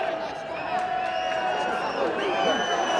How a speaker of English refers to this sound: Crowd howling for the final whistle.